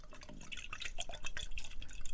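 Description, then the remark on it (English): Peach-flavoured wine of 13% alcohol pours into a glass with a steady trickle, bright splashy dripping and faint glassy ringing running for a couple of seconds without any talking. “Don't put too much in. Jesus. And then you swirl it about.”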